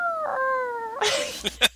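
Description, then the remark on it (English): A cat lets out a long, steady, wailing yowl for about a second, then breaks into a harsh, noisy snarl with a couple of short spitting bursts at the end. “This is why they throw boots at cats on the fence, by the way.”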